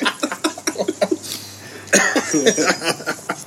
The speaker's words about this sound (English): As he's smoking a Swisher Sweet. Swisher Sweet. Swisher Sweet. And cough twice.